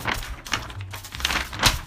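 A blank sheet of paper rustles and crinkles, a few quick papery swishes and light taps over about two seconds, with no voices.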